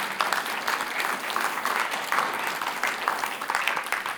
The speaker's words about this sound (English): Give him a clap, everybody.